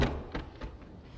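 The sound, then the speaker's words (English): Three heavy, dull thumps of people banging on the wooden door of a boat, evenly spaced and fairly muffled, with a low rumbling background and no voices. “Noah can do is listen to the screams of those that rejected God as they bang on the boat. Let us in! Help! Save us!”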